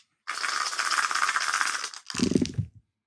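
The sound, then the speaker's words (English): Dice rattle steadily in a cup or hand for about two seconds, then tumble out and clatter across a tabletop in a short, fuller burst before stopping, rolled for an investigate roll. Fairly loud, with no voices. “Go ahead and do an investigate roll.”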